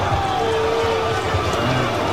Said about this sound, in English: Was that booing again, Berkey? The Waratahs 20, the Force 21. This is a 3-1 start for the Waratahs now. Home again. That booing we heard last week. Was that them, or was that for the referee? Was that just people were just angry?